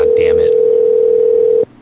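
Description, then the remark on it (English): A loud, steady telephone dial tone hums continuously for about a second and a half as someone calls a number again, then cuts off abruptly; a brief muffled voice sits underneath at the very start. “Okay, we're going to call them one more time and then we'll move down the list.”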